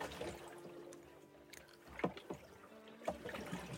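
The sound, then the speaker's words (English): Water sloshes and splashes against a small rowing boat on the open Atlantic Ocean, with a few sharper knocks and splashes standing out over a steady wash of sea noise. No one speaks. “I've been on a rowing boat in the Atlantic for 100 days straight, just rowing.”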